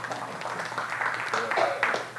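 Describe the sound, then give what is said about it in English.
A crowd claps and cheers together, a dense, steady patter of many hands mixed with scattered voices, fairly loud and sustained for a couple of seconds, the audience applauding themselves. “So everybody give your own selves a hand clap right now.”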